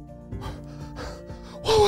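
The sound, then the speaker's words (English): A voice imitates panting to catch breath: a series of short, breathy gasps, spaced unevenly, ending in a louder, voiced gasp. “Henry panted to Charlie, trying to catch his breath from the escape and excitement”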